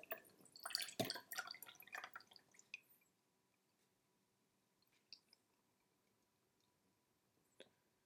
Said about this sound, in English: So I'm just going to go pour this one out, pour this cold brew out.